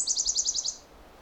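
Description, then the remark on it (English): A Nashville warbler sings a quick, high-pitched run of about seven bright repeated notes, clear, in Bruce Peninsula National Park, ending abruptly with no voices. “And we got another Nashville warbler.”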